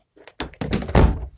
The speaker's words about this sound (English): Sorry, I was just letting my dog out. My dog was in my room, and so I need to close my door.